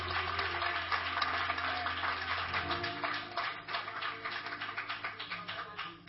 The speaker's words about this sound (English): clap your hands as you're being seated, hey, clap them loud.